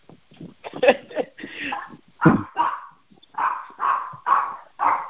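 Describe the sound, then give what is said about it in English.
Several dogs bark in quick, irregular bursts while chasing a person, fairly loud, with a run of evenly spaced yaps toward the end and a brief whine mixed in. “I'm being chased by these silly dogs.”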